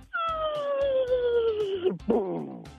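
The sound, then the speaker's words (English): A person mimics the sound of their favorite firework with their voice: a steady, falling whistle that glides downward for nearly two seconds, then a sudden breathy burst for the bang that quickly fades. “What is the sound of your favorite firework”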